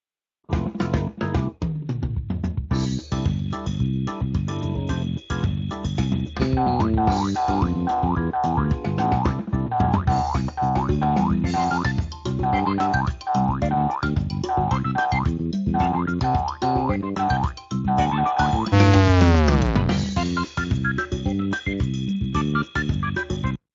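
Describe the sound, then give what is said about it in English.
Bouncy electronic game music with a steady beat, punctuated by repeated springy boing-like hop effects with rising and falling pitch sweeps, including a long downward swoop near the end; no one speaks. From Ruby Hop, a Flappy Bird-style game of about 200 lines of Ruby code. “I also have another game called Ruby Hop, that is pretty fun and I thought worked.”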